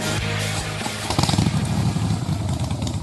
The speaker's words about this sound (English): Who needs a rev up? For Harley Heaven, the Harley Davidson Pan America is coming to Harley Heaven in Melbourne, Dandenong and Ringwood.